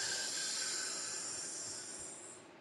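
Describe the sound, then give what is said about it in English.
A long, deep breath drawn in through the nose, a steady airy hiss lasting a couple of seconds before tapering off, with no talking. “That life I just filled my lungs with is what I celebrate.”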